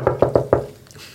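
A father knocks four sharp knocks on a door, quick and evenly spaced and fairly loud, with a short ringing tail fading into quiet afterward.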